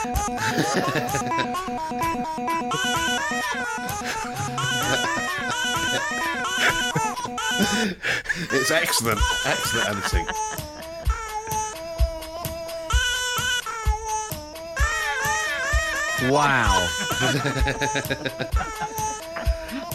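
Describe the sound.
A baby boy's babbles, coos and cries, recorded by his dad every day through his first year, chopped and stitched together into a loud, rhythmic, song-like video montage with shifting pitches, while an adult briefly speaks over it.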